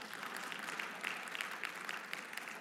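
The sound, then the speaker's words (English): An audience at a church service breaks into steady applause after hearing that over $800,000 was given to the gift, many hands clapping in a dense, continuous crackle that holds evenly for a few seconds with no one speaking over it. “Yeah, don't applaud or anything.”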